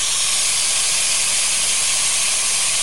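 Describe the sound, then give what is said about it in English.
Heavy rain pours down at a house in Florida in a dense, steady hiss that holds constant and loud throughout, with no individual drops standing out and no voices. “That's rain.”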